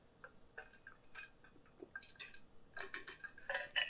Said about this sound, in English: But excuse me, sorry, just gonna take a little drink of water here. I'm not used to talking so much on the podcast, so I'm getting a little dry.